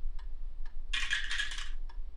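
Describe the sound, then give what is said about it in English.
Dice rolled for a persuasion check clatter down a dice tower in a dense, bright rattling burst lasting under a second, with a few isolated clicks before and after. Fairly loud, with no voices. “Yo, ooh, fucking dice tower.”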